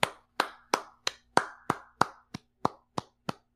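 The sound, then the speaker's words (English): About eleven sharp hand claps for Dolph Ziggler at a slow, steady pace, each a crisp slap with a quick decay and no talking in between. “Let me start a clap for Dolph Ziggler.”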